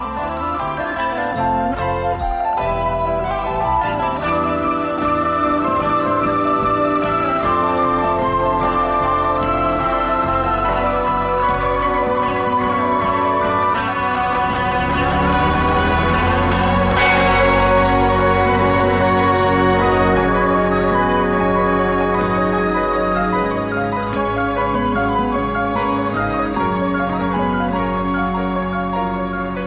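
A dense, layered progressive rock passage plays loud and unbroken, sustained instruments stacking up before the texture swells and surges about halfway through. No voices are heard.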